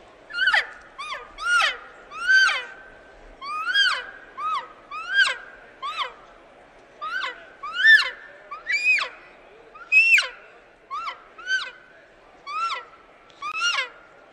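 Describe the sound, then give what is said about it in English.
A hunting call blown to imitate a cow call: a rapid series of about fifteen short, high, mewing chirps, loud, with no talking. “let's demonstrate a couple of calls that you have. So what are we going to hear first? A cow call.”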